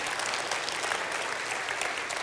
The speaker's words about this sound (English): I like it when you clap.